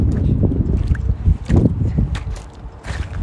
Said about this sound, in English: Sorry, guys, this hella wind kind of sucks. Guys, can you hear that one? It's just hella strong. It's giving me a headache.